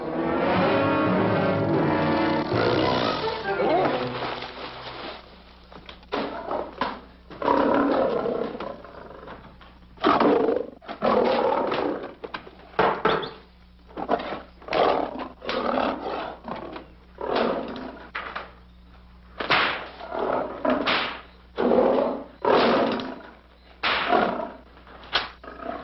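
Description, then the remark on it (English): Big cats, being tried out before being sent to the States, roar loudly, opening with a long sustained roar followed by a string of shorter, rough roaring bursts at an uneven rhythm, with no talking. “Why he has to try those cats out before he sends them back to the States.”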